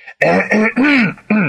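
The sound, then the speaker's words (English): A man's voice loudly imitates clearing his throat, a quick series of three or four voiced 'ahem'-like bursts with rising and falling pitch. “He coughed more loudly.”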